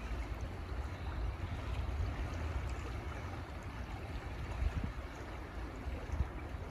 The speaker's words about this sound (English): The sound of water outside of you but also inside of you.